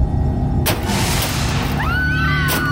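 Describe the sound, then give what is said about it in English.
Loud crunch of metal as a car is struck: a sharp crash, a grinding rumble, then a shrill metallic screech and a second heavy impact, with no voices. “Just then I heard the sound of crunching metal”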